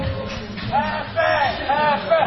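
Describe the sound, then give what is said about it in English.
Loud crowd hubbub fills a Mardi Gras bar party in Washington, D.C., with overlapping voices and shouts rising in waves, a dense wall of chatter as the crowd chants. “Tequila Beach, biggest Mardi Gras party in D.C. As the crowd chants our names.”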